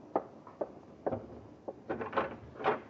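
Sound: front door being opened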